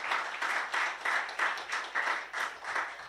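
A crowd applauds steadily for about three seconds, a dense patter of many hands clapping at once, with the loudness swelling and dipping in a loose rhythm.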